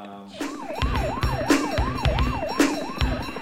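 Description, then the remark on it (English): A police siren wails rapidly up and down in a steady cycle, mixed into music with a pounding beat of regular drum hits underneath. No one speaks. “Not only do the police come, but there's a helicopter.”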